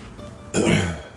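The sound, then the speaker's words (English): A single loud, rough cough bursts out after a moment of quiet, harsh and phlegmy like a throat being cleared, then trails off with no talking around it. “Trench cough.”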